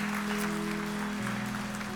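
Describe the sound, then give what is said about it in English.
An audience applauds the Lord steadily in praise, a dense wash of clapping that holds at an even level throughout, with a sustained low tone droning beneath it that shifts slightly in pitch partway through. “Give the Lord a good hand.”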